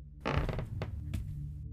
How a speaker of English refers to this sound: As I was passing through the kitchen, on my way back to my bedroom, I heard the floor creak.